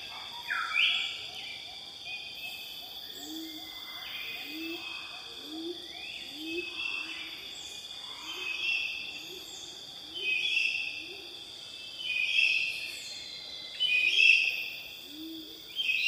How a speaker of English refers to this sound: I'm hearing a whoop, whoop. That's like a pigeon, a forest, like a fruit pigeon, a fruit dove.